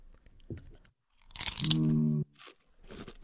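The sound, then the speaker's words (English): Loud crunching as someone bites into a crisp dill-flavored kettle chip, a dense burst of crackly chewing lasting about a second, with a brief hummed tone partway through and quieter mouth sounds around it. “So these look like standard kettle chips. It smells like dill.”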